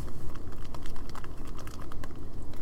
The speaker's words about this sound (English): So, for those of you who can't tell by the sound, I just poured the cheese powder into the cup and mixed it in thoroughly. Ooh, let's give it a moment just to listen.